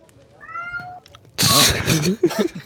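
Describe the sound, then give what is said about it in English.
A cat gives one clear, drawn-out meow in a quiet moment, followed right after by a burst of loud voices and commotion. “The cat loved that joke.”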